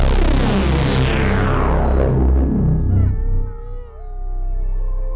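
Several dogs howl together in a loud, sustained chorus, their drawn-out wavering cries overlapping before trailing off into a few thinner, quieter howls.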